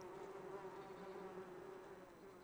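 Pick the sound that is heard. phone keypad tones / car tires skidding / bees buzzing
bees buzzing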